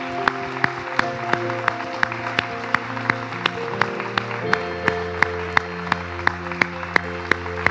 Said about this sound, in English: So come on, let's just honor the Lord. Let's all just give him a hand clap of praise. We just celebrate, lift up his name.